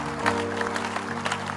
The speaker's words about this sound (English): Your clapping is very anemic, but it's not a problem. It will not stop me from preaching.